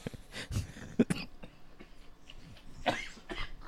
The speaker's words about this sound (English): Sorry, I have a cough.